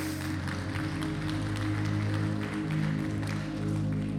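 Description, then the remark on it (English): An audience claps along, the claps coming as uneven scattered bursts beneath steady sustained keyboard chords that fill the room throughout. “You can clap your hands if you want to.”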